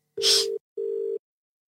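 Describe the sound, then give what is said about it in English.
A phone ringback tone sounds through the line as a man is called: two short, steady buzzing tone pulses in quick succession, the first opening with a brief burst of hiss, with no answer and no voices. “Well, I'm just getting him on the phone right now.”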